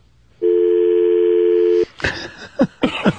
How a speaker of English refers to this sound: He should have just played the dial tone through the whole one. I would have enjoyed it. Oh, wait, you hung up on him? Yeah. Oh, I thought he hung up.